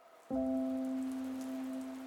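Heavy rain hisses steadily in London in the fall of 1896 after a sudden start, a dense wash of noise that holds for about two seconds beneath a sustained low droning tone. No one speaks.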